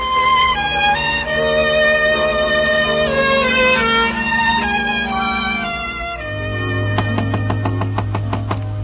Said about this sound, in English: why are you knocking at the door?